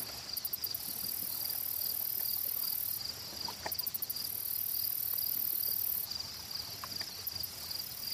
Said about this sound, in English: The crickets start to replace the sound of birdsong in the forest as the sun finally sets into the lake.